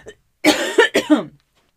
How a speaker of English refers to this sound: Excuse me, I have to cough again, but I have a question.